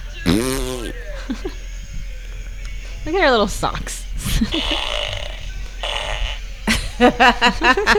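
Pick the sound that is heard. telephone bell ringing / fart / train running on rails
fart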